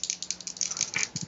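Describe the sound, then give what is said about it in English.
Dice rattle and clatter in a quick burst of sharp, uneven clicks as they are rolled for an awareness check, fairly quiet, lasting just over a second with no voices. “I will roll that dice.”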